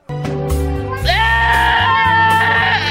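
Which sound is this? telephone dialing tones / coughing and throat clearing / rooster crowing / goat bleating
goat bleating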